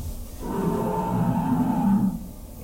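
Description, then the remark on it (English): A single deep, sustained dinosaur roar lasting about two seconds, loud, with a growling low rumble that swells and then cuts off. “Yeah, I made a roar face when it roared. It was kind of nerdy. It was kind of nerdy. It was a dinosaur.”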